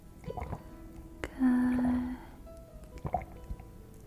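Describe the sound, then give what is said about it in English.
Water is poured briefly into a glass, a short gurgling fill with a ringing tone, surrounded by a few soft drips and clinks. “some water.”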